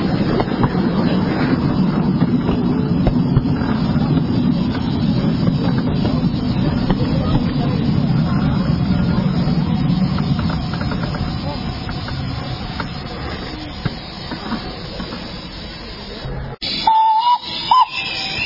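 A heritage steam train rumbles and hisses steadily as it rolls into Tidesley Station, the heavy low churning easing off as it slows, followed by a sharp break and a short high whistling tone at the end.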